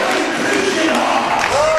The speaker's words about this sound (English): You hear the crowd in the background. They're going to be a packed house here tonight. It's not a big gym. And the Warrior fans have turned out in spectacular fashion